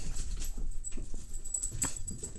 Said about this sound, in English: My dogs are out of control tonight, and so you're going to hear them probably running around. I'm sorry. I have two dogs.